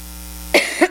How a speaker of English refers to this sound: And I think this morning, I think if God would help us, and if I cough a little bit, excuse me, has anybody had the sinus cough thing going well? excuse me, me too. Just got out of bed with it.